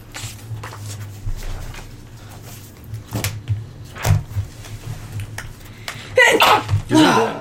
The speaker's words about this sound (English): Bless you.